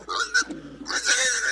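A pig oinks and grunts in quick, harsh bursts, ending in a louder, noisy squeal. It is fairly loud, with no talking.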